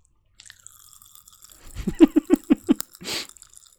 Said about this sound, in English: Ow! Pop rocks, made with real dynamite.